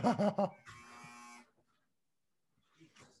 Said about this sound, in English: Give me 1 second. I've got a buzzer that keeps going off here for a second. I don't know if you can hear it.